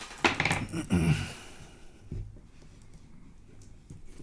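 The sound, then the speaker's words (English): Dice clatter and rattle together in a short burst of quick clicks, fairly loud, as all the players' dice are rolled in a game, then settle into a quiet background hush with a faint thump. “So roll all your dice, and then you subtract whatever lower color from the higher color.”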